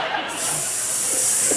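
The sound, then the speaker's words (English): A person voices a hairless sphinx cat with a long, steady snake-like hiss that starts after a brief pause and continues loud to the end, with no words spoken. “Why is it a snake a little bit?”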